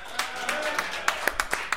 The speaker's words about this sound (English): Round of applause.